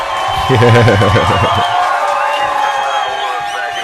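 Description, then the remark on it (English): A small group of people cheers and whoops loudly for a few seconds for a listener, with a couple of voices shouting over a noisy, crowded background. “Right, let's give a cheer out for this man listening.”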